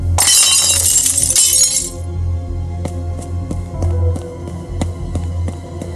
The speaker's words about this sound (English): a large vase had fallen from the mantel and shattered on the floor.